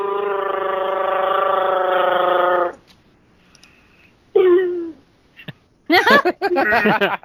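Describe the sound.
A voice imitates a Wookiee roar as an entry in a Wookiee roar contest: a long, steady, throaty moan, then a pause, a short falling groan, and finally a loud burst of high, warbling yowls.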